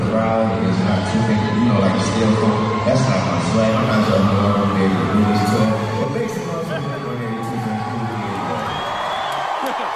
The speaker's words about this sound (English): They cheering because he quit. Yeah, well, he was saying make some noise for ….